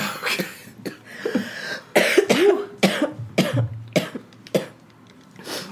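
A fit of harsh, raspy coughing, about eight or nine loud hacking bursts in quick succession with brief gasps between them, ending in a few weaker coughs.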